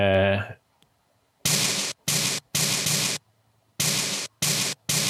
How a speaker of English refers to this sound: So that's it with a bit of EQ. Trying to get it to sound a little bit more snare-like, but still keeping that white noise feel.